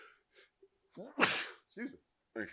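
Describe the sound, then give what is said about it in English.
A loud sneeze bursts out with a sharp hissy blast, preceded by a couple of quick inhaled breaths and followed by short voiced sounds from another person. “Bless. I didn't even say bless you. Bless you,”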